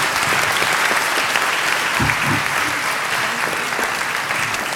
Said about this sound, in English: But thank you all very much for being here. This was a lot of fun. Round of applause.